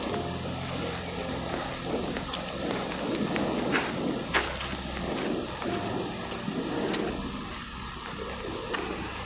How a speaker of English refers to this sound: That was close. Are you getting some good rain audio? I think so.